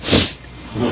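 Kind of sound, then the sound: human body sound, a person sneezing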